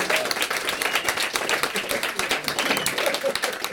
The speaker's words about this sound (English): Next to play our game is Mr. Stuart Ashen. Please come up on stage and debase yourself for our entertainment. Everyone, applause.